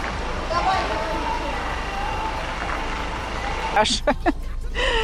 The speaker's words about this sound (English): Trash is going on here. A big traffic jam to leave the parking lot. So we are stuck here at the exit from this shopping plaza.